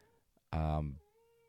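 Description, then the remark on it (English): A cat lets out one loud, drawn-out meow lasting about half a second, then the sound settles back to a faint, steady hum. “I think the cat's out and about.”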